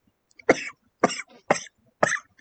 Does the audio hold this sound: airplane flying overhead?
no